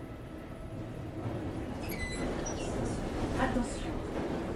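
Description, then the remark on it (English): A busy, reverberant hall of Gare du Nord train station in Paris fills with a steady low rumble of trains, with brief high-pitched wheel squeals in the middle and indistinct crowd voices murmuring throughout. “We arrive at Gare du Nord station. Stood in the middle of the echoing train station, she hands me back my massive duffel bag.”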